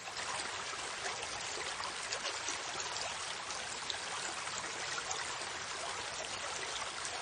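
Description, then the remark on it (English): Steady rushing and babbling of a flowing river, continuous, with a dense bright wash of water noise that holds even throughout, no voices. “Now, dip your cup into the river, which flows with the goodness of clear, clean, drinkable water.”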